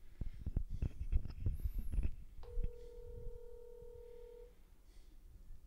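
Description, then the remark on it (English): A single long ringback tone from an outgoing phone call, steady and fairly loud for about two seconds, after some muffled thumps and handling noise. Nobody picks up. “He's not drunk enough to answer the phone.”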